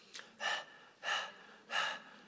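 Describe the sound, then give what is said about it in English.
A person imitates the panting of someone thirsty: three heavy, breathy exhalations in an even rhythm, with no other sound around them. “Panting. God, I need help. I need some water.”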